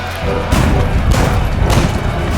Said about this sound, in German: Dann Feuer! Nachladen und erneut feuern! Habt ihr nicht gehört? Ladet die Kanonen und schießt!